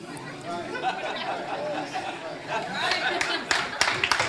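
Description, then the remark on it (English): Audience clapping breaks out amid a busy hum of crowd chatter, starting scattered and growing into a few sharp, louder claps near the end. “Why y'all clapping?”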